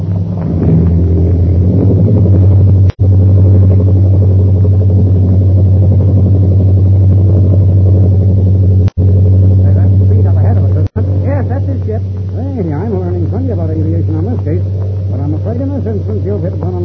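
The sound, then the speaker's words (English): A loud, steady airplane engine roar during takeoff from a runway, with a deep droning hum throughout, briefly cutting out a few times, while voices speak faintly beneath the din in the later part. “We'll take off right behind it.”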